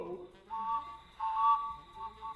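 A whistle is blown from a turret window in a few steady, sustained toots, one after another, sounding fairly quiet, with no one talking.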